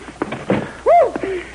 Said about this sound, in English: Now, come in and close the door